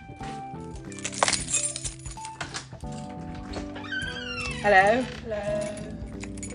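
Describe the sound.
A brief metallic jingle of keys rings out as they are handed over to the speaker's sister, with a short spoken greeting and a cat meowing in the background.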